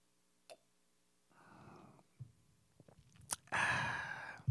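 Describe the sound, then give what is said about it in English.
A sharp click, then a soft rushing sip and a few small clinks, followed by a louder, drawn-out slurping sip of Hennessy cognac, with no talking. “Let me take a sip.”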